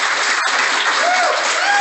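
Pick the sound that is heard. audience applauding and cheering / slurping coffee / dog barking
audience applauding and cheering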